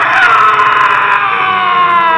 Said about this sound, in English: I struggled no more, but the agony of my soul found vent in one loud, long, and final scream of despair.